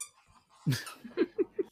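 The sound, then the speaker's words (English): Gandalf, a small pet, lets out a run of short, high squeaks in quick succession while playing, moderately loud, with a brief scuffling burst before them and no talking. “Gandalf over there squeaking around.”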